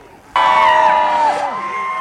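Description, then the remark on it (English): A loud crowd suddenly bursts into cheers and chants, voices whooping together and holding for a couple of seconds before the pitch drops slightly, as the doors of Apple's first physical store in India open in Mumbai. “Amid cheer and chants, Apple CEO Tim Cook opened the doors of the company's first physical store in India in Mumbai Tuesday”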